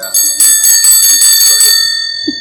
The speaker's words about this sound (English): This one's pretty. Here's another interesting Doesn't look one. Like it's being ridden, though. This looks like a this is the bell for service.